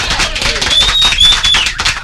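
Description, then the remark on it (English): An applause sound effect played on the Money Matters show: dense, crackling applause fills the whole stretch at a steady, fairly loud level, with a few high-pitched whistles and cheering voices mixed into the clapping. “The show cannot go on without the applause.”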